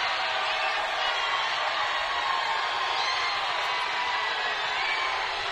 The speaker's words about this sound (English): Travis Kelce now doing the Hulk Hogan, going to each side of the street to try to get the crowd fired up, as you can hear.